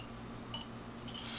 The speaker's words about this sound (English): Taste. Everybody can hear the clinking of our fun little glass. Cheers. Octopi. Cheers. Kanpai.